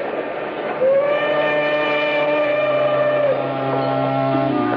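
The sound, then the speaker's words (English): A steam train of ten cars, baggage car included, rolls along steadily with a continuous rumble, and a long sustained steam whistle sounds over it for a few seconds, fairly loud. “made the rounds, 10 cars, baggage car included, the length of the train and back.”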